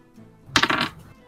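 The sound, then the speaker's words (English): Dice rolled during a game clatter onto a hard floor in a quick burst of several sharp, rattling clicks lasting under half a second, clear against a quiet background. “The dice fell on the ground.”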